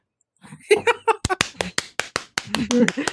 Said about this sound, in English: We're all clapping.